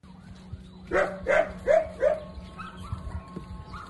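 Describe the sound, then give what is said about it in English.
A dog barks four times in a quick, even series, clear, then falls quiet while faint tonal background sounds, a little like a siren, linger. “Is the Beethoven dog doing the dog?”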